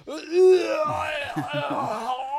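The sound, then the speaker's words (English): A voice imitates an exaggerated, loud yawn: a long, drawn-out groaning vocal that swells to a loud peak early on, then wavers and trails on, dipping in pitch, for a couple of seconds. “The guy who yawns like this.”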